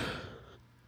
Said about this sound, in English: There I go with the yawning again, man. I had just got out of the shower, too, to wake myself up.